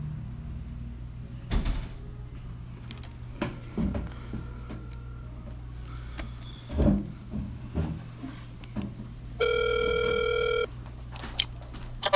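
A phone call being placed: scattered clicks and soft handling thumps over a steady low hum, then one clear electronic ring tone lasting about a second near the end.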